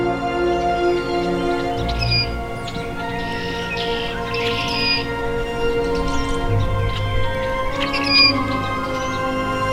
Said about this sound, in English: this rusty blackbird is right on time, about 30 minutes since its last songs.